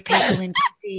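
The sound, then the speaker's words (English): A single loud sneeze bursts out at the start, mixed with a speaking voice that keeps talking briefly afterward. “Bless you.”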